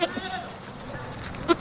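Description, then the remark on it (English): A grazing goat, kept alongside horses and chickens, bleats in short, nasal cries, with a faint call at the start and two louder bleats near the end over a steady outdoor background. “Grazing goats, horses, and chickens.”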